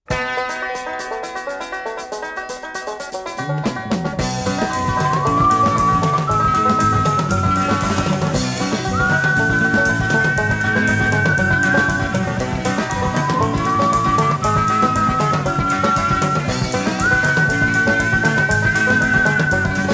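A banjo opens alone, then a fuller band joins and a clear whistled melody rises and slides over the accompaniment, loud and steady throughout.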